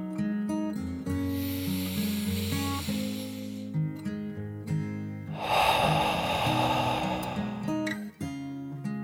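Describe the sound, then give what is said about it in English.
A voice imitates a dragon's deep, loud breath in and out: a long airy inhale, a short pause, then a rougher rushing exhale, both over steady background music. “Dragon nodded enthusiastically and once more took a deep dragon breath, in and out.”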